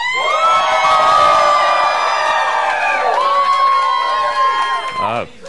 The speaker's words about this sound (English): if you're listening over podcasts, imagine Madison Square Garden size crowd, vast people. Screaming. People are crowd surfing. We keep getting hit with beach balls. It's wild here.